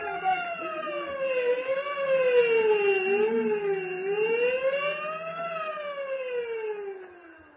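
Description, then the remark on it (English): A prison escape alarm, rung after a prisoner escaped from his cell, wails steadily, its siren tone rising and falling in slow sweeps, loud and continuous, then fading at the end. No voices. “Ring the alarm bell. Hurry. Close all cell blocks. Prisoner escape.”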